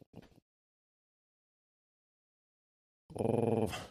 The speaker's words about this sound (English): Sorry, I'm not playing a dog creature yet. That's just the sound of the puppy in the hallway.